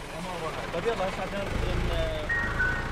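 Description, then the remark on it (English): A gas canister delivery truck in Amman, Jordan, delivering metal gas canisters door to door, plays a tinny melodic jingle of a few bright notes over the low rumble of its idling engine and general street noise. “That jingle isn't from the ice cream man. It's a truck delivering metal gas canisters door to door.”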